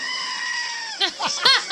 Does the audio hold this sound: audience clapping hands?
no